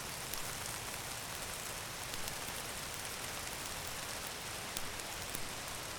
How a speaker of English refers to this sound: A rain cloud moves across the landscape, and you embrace every droplet.